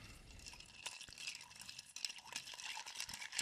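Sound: stirring a cocktail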